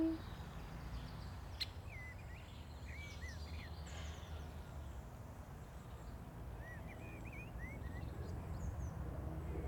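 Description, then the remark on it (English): Imitated birdsong: a few quick, rising chirpy whistles in two short bursts, fairly faint, over a steady low rumble of background noise with no talking. “you can download a bit of bird song from blackbird bird song and song thrush and collared dove and woodpecker and bullfinch that I've made”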